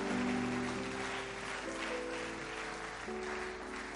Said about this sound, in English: Because yes, if you are clapping your hands, please clap it well.